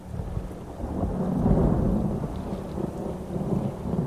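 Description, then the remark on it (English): A thunderstorm over Hilton Head Island rumbles with deep, rolling thunder swelling midway, while steady heavy rain pours and pelts the large glass windows of a lantern room throughout; no voices, just the dense wash of the storm. “Lightning soon filled the skies over Hilton Head Island, and rain began pelting the large glass windows of the lantern room where Fripp tended to the light.”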